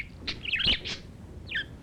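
A pet parrot named Tiuks chirps in short, bright bursts, a cluster of quick tweets followed by a brief pause and one more trilling call, against a low background hum.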